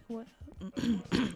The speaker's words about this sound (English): Yeah. You clear your throat on that.